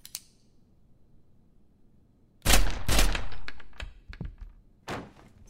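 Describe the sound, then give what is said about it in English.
A single sharp bang, a pause, then a rapid volley of heavy, muffled gunshots fired high through a door at something unseen on the other side, followed by one more shot after a brief gap. “Okay, fair enough. I'm shooting through the door.”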